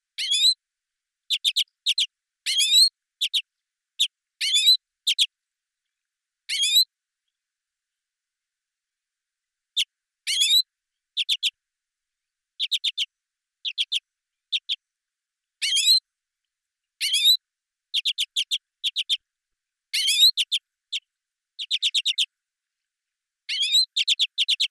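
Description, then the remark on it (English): Lesser redpoll song and calls: rapid, high-pitched chirps and buzzy trills come in short bursts with brief pauses, repeating irregularly over a quiet background with no voices. “It also has a plaintive alarm call, the trilling song combined with the flight call with a buzzing rattle, and is often given in an undulated song flight around the territory.”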